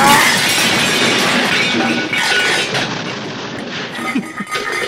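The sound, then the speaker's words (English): A long, loud cascade of junk crashing down from a closet opened while looking for a blazer, a dense clattering and banging of objects tumbling and smashing for several seconds before trailing off in scattered knocks. “Looks like everything but your blazer was in there.”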